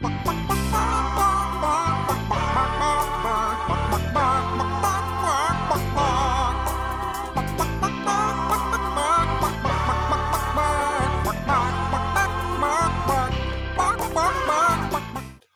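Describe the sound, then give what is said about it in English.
A puppet chicken clucks in place of singing, following the tune of an upbeat pop song over a full, steady backing track that plays loudly throughout before cutting off. “listen to Camilla the Chicken sing … …”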